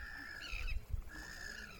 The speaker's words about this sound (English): Seagulls are flying across the sky, screeching or holding a beak full of fish.